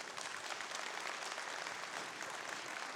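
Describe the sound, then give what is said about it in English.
A crowd claps for the speaker's wife after he mentions their 30th wedding anniversary, many hands producing a dense, continuous patter of applause that holds at an even level for the whole stretch, with no voices rising above it. “They're clapping for you, by the way.”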